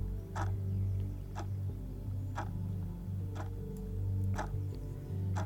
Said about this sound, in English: With each number, with each letter, with each sound of that powerful pendulum, and with the sound of my voice, you can't help but feel even more relaxed than you already were.